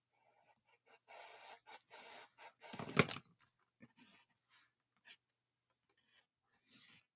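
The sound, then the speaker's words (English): A pen scratches quickly across paper in a run of short, raspy strokes with brief pauses between them, one sharper, louder scrape midway, and no talking, as someone draws Peppa Pig within a 10-second time limit. “Draw Peppa Pig right now.”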